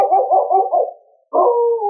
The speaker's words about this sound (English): One evening, Ricky nosed open the door of the cabin and howled at the full moon. There were answering howls from the woods beyond the town.